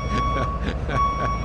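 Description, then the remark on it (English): A truck's reversing beeper sounds a steady high electronic tone that cuts out briefly and then resumes, fairly loud, over a busy background of voices. “Let's back that truck right up.”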